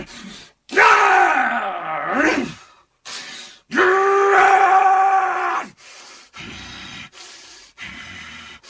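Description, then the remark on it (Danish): A man voicing fight scenes, swinging his arms in the air, lets out two long, loud, strained growling roars like an angry wolf, followed by several shorter grunting bursts, all harsh with no normal speech. “Han står og slår ud i luften, samtidig med at han growler som en sur ulv, og han råber og gør ved.”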